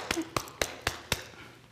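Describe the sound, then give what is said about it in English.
Five quick, evenly spaced knocks on the door of Lot's house, sharp, each rap crisp and hollow, followed by a short, quiet tail. “And while they went to Lot's house, the men of the city of Sodom and Gomorrah, the young and the old, show up at Lot's house, knocking on Lot's door.”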